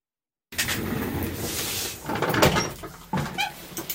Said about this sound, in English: Do you have the Foley ready? Yeah, can we open a door